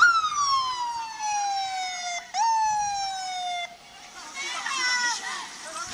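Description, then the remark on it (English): A loud ambulance siren wails in long descending sweeps, each tone gliding downward before jumping back up, then gives way to overlapping crowd voices and shouting as people block the ambulance. “Yeah, they're blocking they're blocking an ambulance.”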